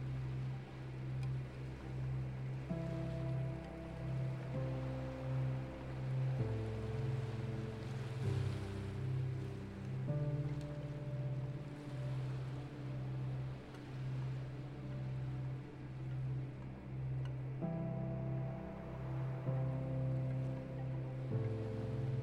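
Steady ocean surf washes in the background, swelling gently every few seconds beneath a soft, sustained musical drone of layered tones. No voices are heard.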